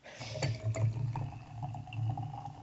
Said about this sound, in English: That wasn't me pissing. It was me pouring piss into my glass. Thank you, a little bit of the bubbly. An important clarification. It's very fizzy.